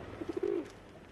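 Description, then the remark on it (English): A pigeon coos in a city: three short soft pulses quickly followed by a longer rolling coo, low and throaty, with no voices present. “Accompanying these pigeons are very menacing signs hung up at every street corner”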